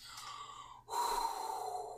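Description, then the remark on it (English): A voice imitates heavy, labored breathing of a man worn out from the hard work of preparing a meal: a long exhale, a brief pause, then a louder, forceful breath, breathy with no words spoken. “And then, he finally, in verse 8, he took butter and milk, the calf which he had prepared, I can imagine him breathing heavy because this was a lot of work, and set it before them.”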